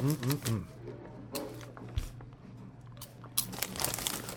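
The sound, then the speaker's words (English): Crisp crunching of snacks from a bag of Vicks, with crinkly bag rustling, fairly quiet, in irregular bursts, with a voice speaking briefly at the start. “Can you hear that crunch?”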